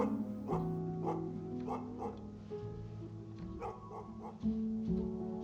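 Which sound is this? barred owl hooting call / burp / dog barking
dog barking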